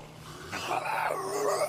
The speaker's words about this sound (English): there are two yellow glowing eyes. One of the arms is bigger than the other, a huge haunch, huge mass is on their left shoulder, and the other arm is spindly, and their mouth opens way too wide, and you just hear this hurtling scream.